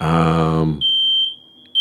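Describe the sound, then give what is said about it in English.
In an apartment complex, a short groaning vocal sound gives way to a smoke detector's shrill, high-pitched alarm tone that holds steady and loud, with a brief dip before it sounds again. “Yeah, smoke detector's still going.”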